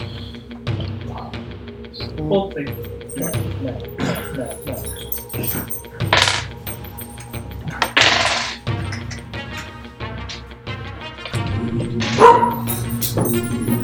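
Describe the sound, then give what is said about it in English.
Dogs bark in irregular bursts, somewhat muffled, with scattered yips between louder barks and a sharper outburst near the end; faint voices murmur underneath. “Dogs are back in the cave.”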